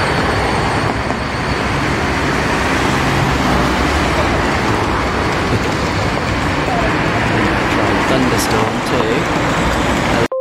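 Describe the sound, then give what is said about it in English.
A steady, dense roar of city traffic fills the whole stretch, cars and heavier vehicles passing continuously at a fairly loud, even level, with indistinct background murmur mixed in. “Clock, cat, hoover, pink noise, ground noise, city. I tried this one.”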